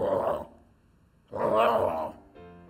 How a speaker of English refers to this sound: lions try to put fear in people. That's what they do. Roaring lion.